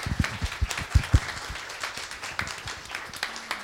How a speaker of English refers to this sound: A round of applause for the organiser right over there.